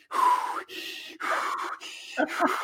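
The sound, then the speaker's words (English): A voice imitates heavy labor-style breathing: a series of loud, forceful breaths, huffing out and sharply drawing in, with strained gasps in a steady rhythm, alone. “And literally, I find myself breathing as if I was like giving birth.”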